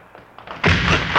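A few soft thumps lead into a sudden loud, heavy crash as police officers force open the side door of a plant, with a rough, clattering burst of noise that carries on to the end.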